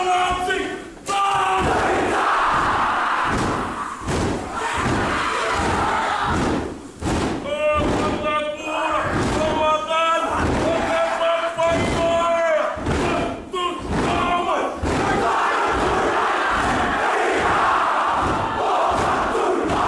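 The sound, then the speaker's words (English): A New Zealand haka war cry performed by Palmerston North Boys High School: a group of voices shouting a forceful, rhythmic chant in unison, punctuated by steady heavy stomps and slaps, loud and sustained throughout, with sharper sung cries in the middle. “Let's start off with the war cry all the way from New Zealand.”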